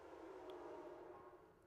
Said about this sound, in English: I'm gonna wait till this train go by. Choo choo.